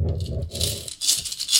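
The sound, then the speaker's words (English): Coins rattle and clink in a quick, continuous shake lasting under two seconds, bright metallic jingling with a duller rumble of handling at the start. No one speaks. “We have coins. We have coins available.”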